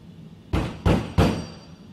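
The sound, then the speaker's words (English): Three firm knocks land in quick succession, each with a short resonant decay, and a faint, high ringing tone lingers after the last one. No one speaks. “each time you would knock, I would hear that little ding right there. So I wasn't sure if they're water droplets”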